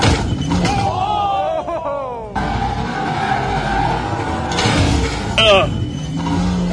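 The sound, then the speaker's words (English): A 469-horsepower sports car's engine whines and revs as it spins out on a pothole in concrete pavement, followed by a heavy thudding impact and scraping as the side of the wheel well catches, with another jolt moments later and talking faintly underneath. “It's a pothole in the pavement. And he spun around and caught the side of the wheel well.”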